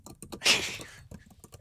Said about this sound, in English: Typing. Oh, that sounds typing, horrible. Typing. It's silent. Yeah. And it's typing, it's journalist, and it's paper rustling, and there is slight whispering, but it's head down because it's a lockup. You are literally locked in there.